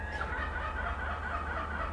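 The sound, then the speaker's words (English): A seagull calls out loudly and steadily for a couple of seconds, a harsh, squawking cry heard alone with no one talking over it. “Oh, the seagull enjoying it.”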